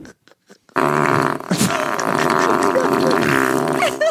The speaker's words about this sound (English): He's farting on his food. Oh, just for one, for good luck. That's... He does have dirty underwear. Yes, yeah. And he's farting on the food that he's going to eat.